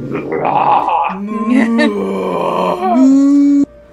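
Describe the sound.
A voice imitates a cow, drawing out a loud, groaning moo that drops into a deeper register and holds for several seconds before cutting off abruptly.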